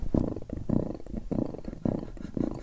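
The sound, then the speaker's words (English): A person imitates a contented cat's purr with their voice, a low rumbling drone that swells in about five steady, breathing-like pulses, fairly loud, with no talking. “Oh, can I just do an impression of a happy cat?”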